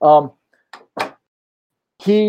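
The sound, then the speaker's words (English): Two short, dull knocks on a door, a moment apart, with a person's voice briefly before and after them. “I think someone knocked on my door.”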